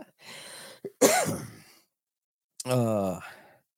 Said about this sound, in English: Still got a cough, as you all get to listen to. Still a little bit congested, so you also get to listen to me sniff a lot.